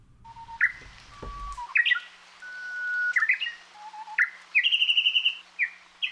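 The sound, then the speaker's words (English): Song of the shy Japanese bush warbler, a small brownish songbird, from the Mokulei Library at the Cornell Laboratory of Ornithology, ringing out clearly with no talking: long, pure whistled notes, each followed by a quick flourish, then a rapid, evenly spaced run of bright repeated chirps. “We've got the song of the shy Japanese bush warbler, thanks to the Mokulei Library at the Cornell Laboratory of Ornithology.”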